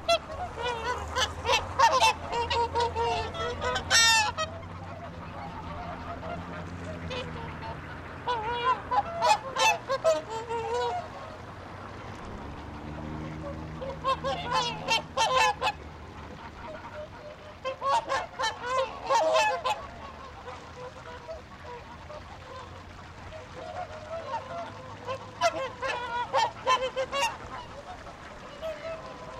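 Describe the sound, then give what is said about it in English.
Geese and ducks honk in repeated bursts at a pond in the center of Reykjavik, Iceland, on a typical morning when people come to feed them; a busy chorus of waterfowl calls rising and falling over a low steady background hum, with brief quieter gaps between clusters. “In the center of Iceland's capital, Reykjavik, there's a pond where each day young and old alike come to feed the geese, ducks, and assorted fowl that inhabit the waterway.”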